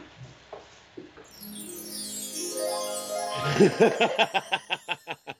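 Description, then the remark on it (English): Birds chirping in a short burst as they fly: a rising whistled sweep builds into a quick series of rhythmic chirps that gradually fade, clear, with no talking. “The birds, they're flying.”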